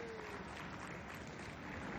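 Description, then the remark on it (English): Steady audience applause at a live Computer Game Show event, for the staff working there, a dense, even patter of many hands clapping at once with no voices standing out, fairly soft and unchanging in level, filling two seconds. “So another round of applause, please, for the staff that's been working here.”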